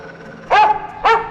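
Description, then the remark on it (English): Two sharp, loud dog barks, the second following about half a second after the first, with no talking. “Or maybe I'll just have my dog rip your leg off.”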